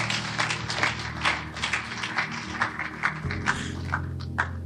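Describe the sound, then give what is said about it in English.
A church audience claps hands for God in a loose, uneven stream of sharp claps over a sustained low musical drone that shifts pitch near the end; no one speaks. “Clap your hands for God.”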